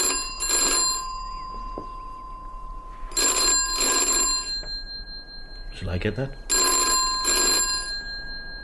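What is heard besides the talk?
telephone bell ringing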